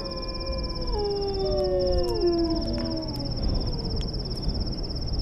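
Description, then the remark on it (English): Several wolves howl together in long, overlapping, slowly falling cries, while a steady high-pitched chirring of insects runs throughout. “Wolves.”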